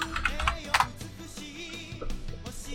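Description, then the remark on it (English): A short, irregular burst of typing on a computer keyboard while searching online, fairly quiet, with scattered key clicks over a low steady background hum. “And I have two keyboards, so I keep looking on the wrong one.”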